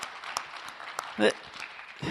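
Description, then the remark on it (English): A church audience claps steadily after a sermon in dense, overlapping applause at moderate volume, with a brief louder vocal cheer rising midway through before the clapping carries on. “Yeah, a round of applause for that amazing word.”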